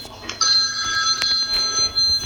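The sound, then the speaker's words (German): A mobile phone rings with a bright electronic ringtone, steady high warbling tones that start abruptly and carry on for a couple of seconds, with no one speaking. “Jetzt klingelt mein Handy.”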